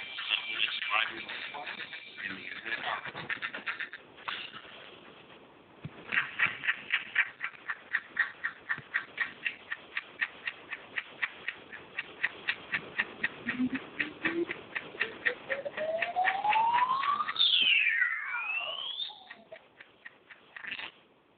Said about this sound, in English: I believe this weird little clip where the clock speeds up really fast to go through the hours. You know, we wish the clock would go this fast.